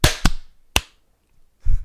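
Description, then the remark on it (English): A group hand clap in rough unison on a count of three: a couple of sharp, loud slaps close together, then a single crisp clap a moment later, followed by a brief burst of muffled noise. “Do you want to just do a little clap on three and then we can start the party?”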